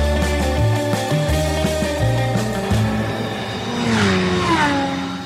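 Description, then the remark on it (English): Racing cars lap the Donington Park racetrack during a track day, engines droning steadily with shifting pitch, and one car sweeps past near the end in a rising-then-falling whine. No one speaks. “They've got a track day actually going on.”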